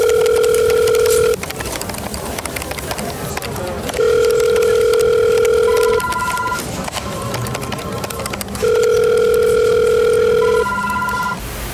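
A telephone ringing tone sounds in three steady electronic bursts about four seconds apart, each a sustained mid-pitched hum with a higher overtone, separated by pauses filled with low background noise.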